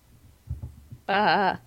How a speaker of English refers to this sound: Well, that's sheep. Never mind. Well, goats sort of make that noise too. Goats more sort of bleat.